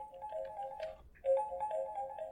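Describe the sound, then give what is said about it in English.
A phone rings with two warbling electronic bursts separated by a brief pause, with no one talking over it: a phone call with Garrett Graff. “We should get him on the phone and ask him the question, was Mueller giggling over the weekend?”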